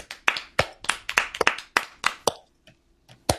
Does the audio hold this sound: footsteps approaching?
no